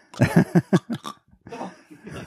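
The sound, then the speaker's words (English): A person makes a rapid series of guttural, rattling clicks from the back of the throat, imitating the clicking call of a clicker creature, followed by a rougher, raspy gurgle. Fairly loud. “She provided a sound that audio lead Philip Kovacs described as originating in the back of the throat, to give the clickers that sound.”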